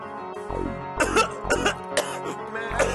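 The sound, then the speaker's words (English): A run of harsh coughs, about four sharp bursts spaced roughly half a second apart, rising loudly over a steady, low musical backing. “Move, bitch, you got coronavirus.”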